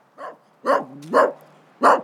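A tiny dog named Hito, guarding an old bunkhouse and log cabin home, barks four times in quick, uneven succession, sharp yappy barks with a brief whine between two of them, and no talking.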